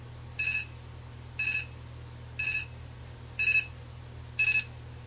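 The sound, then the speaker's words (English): The alarm of a clock that announces the time goes off with five evenly spaced electronic bursts, about one per second, each a short warbling beep cluster, heard clearly over a low steady hum. “Oh, there's the alarm. Let's see if it does anything.”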